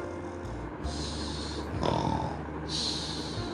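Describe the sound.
Loud, rattling snores from a wolf asleep in a cottage fill the space, a deep throaty inhale followed by a wheezy, whistling exhale, repeating in a slow rhythm with no talking.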